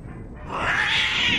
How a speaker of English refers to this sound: Ah, cat!